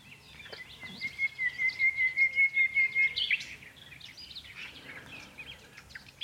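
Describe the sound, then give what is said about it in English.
A nightingale sings alone, a rapid pulsing run of repeated notes lasting a couple of seconds, then a scatter of varied chirps and whistles, moderately loud. “And I rather presumed I must have at some point have heard a nightingale sing.”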